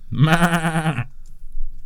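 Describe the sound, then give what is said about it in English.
A person's voice imitates a sheep, giving one wavering, nasal bleat that lasts about a second, fairly loud, followed by quiet background noise. “Sheep, can you understand me?”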